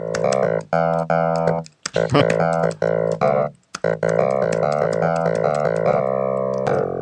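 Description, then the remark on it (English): Bright, buzzy synthesized clavinet, played on a Mac computer keyboard, plays short chords and riffs with sharp attacks and brief pauses, loud, with no voices over it. “Hold on, maybe we can get a bit of more of a smoky clav here.”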